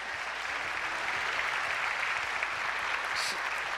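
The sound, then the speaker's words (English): Steady applause from a church audience for a guest preacher, a dense, even wash of many hands clapping throughout, with faint voices mixed underneath and a brief sharper burst near the end. “you can clap again for that, I guess.”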